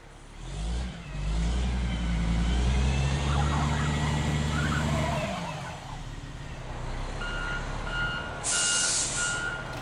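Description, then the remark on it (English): A heavy rented truck's engine rumbles loudly, then steady, evenly spaced backup beeps begin as it reverses, with a short hiss of air brakes near the end. No one speaks. “All right, well, Acab, let's rent a truck for all these bodies.”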